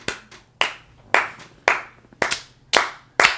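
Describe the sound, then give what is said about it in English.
A single pair of hands claps in a steady, even rhythm, roughly twice a second, about eight sharp, bright claps with no talking. “That is an applause for you for getting all the way to the end of the second episode.”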